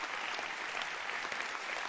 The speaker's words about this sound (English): Can we give God a good hand clap for His word and thank God for His word?